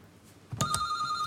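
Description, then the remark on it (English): A quiz buzzer sounds abruptly after a faint hush: a sharp double-hit attack, then a steady, bright electronic tone that holds loudly to the end, with no talking. “Fingers on buzzers.”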